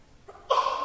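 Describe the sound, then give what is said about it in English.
A single sneeze, with a short faint intake of breath followed by a sudden bright burst that carries on briefly; moderately loud, with no talking. “Bless you.”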